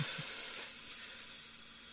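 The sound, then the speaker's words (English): A voice imitates food sizzling on a hot pan with a steady, breathy hiss held for about two seconds, fairly loud, easing slightly softer toward the end. “You can let that shit sizzle for a while.”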